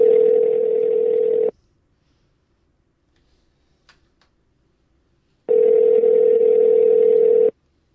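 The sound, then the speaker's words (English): A steady electronic telephone tone sounds twice as someone dials a phone call, each burst lasting about a second and a half, separated by a long silent pause. It is loud and without any voices. “All right, Gene, I'll dial it up.”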